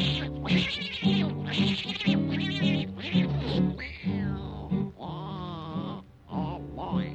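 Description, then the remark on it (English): Voices imitate an old tomcat starting a fight, with loud, drawn-out yowls and wavering meows that overlap and rise and fall continuously for several seconds over a steady musical backing. “Now on that very same night, that old tomcat started a fight. And this is the way it all did sound to me.”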